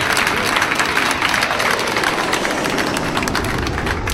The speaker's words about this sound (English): So thanks so much for coming, everyone. It's really nice of you to turn up. And one more time, big round of applause for Luke Heggie. And for Nick Cody.